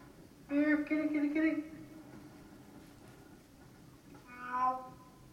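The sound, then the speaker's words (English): A cat named Jonesy meows twice in a movie scene, first a long, drawn-out, fairly loud meow, then after a pause a shorter, higher one, over a faint steady background hum. “Well, he lost the cat, so they made him go get it.”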